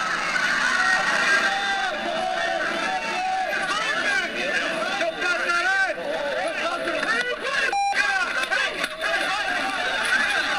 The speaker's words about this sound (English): That was the crowd's reaction.